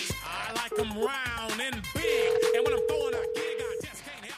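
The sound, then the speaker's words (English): One long, steady ringback tone from an outgoing phone call to Pam Geller, placed live on a show, sounds for about two seconds, layered over background music with sung or spoken vocals. “I hope she answers her phone.”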